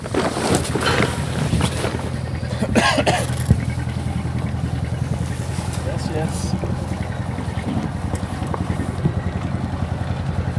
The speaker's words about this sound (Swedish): Ja, då stänger jag av motorn nu då.